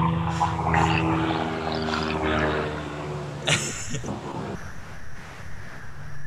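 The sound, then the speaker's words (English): A helicopter passes overhead near an airport, its loud, steady droning hum with a throbbing low engine tone dominating, then dropping away after a few seconds into a rushing, wind-like rumble. “All that background noise just coming in hot. I live next to an airport, so.”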